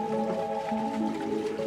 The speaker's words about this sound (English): A water wheel lights up the farmhouse. And unlike most New Zealand farmers in the 1910s, the Phillips family is electrified.